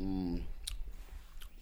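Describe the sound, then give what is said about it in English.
Someone chewing a meth top donut, with a couple of sharp, wet smacking clicks spaced apart. A brief murmur of voice comes at the very start. “what are you eating? Your meth donuts?”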